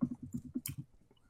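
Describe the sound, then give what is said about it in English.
Quick, soft keyboard typing: a rapid run of about nine muffled keystrokes with one sharper click near the end, fairly quiet, then the tapping stops. “I can hear you typing.”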